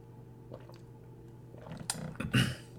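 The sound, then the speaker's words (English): Quiet mouth sounds of someone sipping water, a few soft wet slurps and a louder gulp near the end, with no talking. “Let me get a sip of water.”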